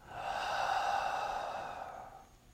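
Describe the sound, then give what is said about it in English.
A single long, deep breath taken during a breathing exercise, a steady airy rush lasting a couple of seconds before tapering off, with no talking. “I'm breathing in. Hold. I'm breathing out.”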